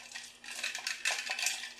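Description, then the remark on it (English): Uneven ice cubes rattle and clink inside an oddly shaped glass, a continuous jittery stream of bright, crisp knocks that swell in the middle and carry on without any talking. “Apologies for this noise. Uneven ice in a weird-shaped glass.”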